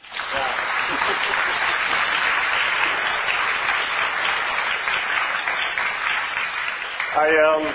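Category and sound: crowd, audience applause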